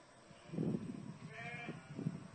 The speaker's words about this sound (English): And I've got a different short clip now with some sheep responding to their shepherd's voice. Sheep, come on, sheep.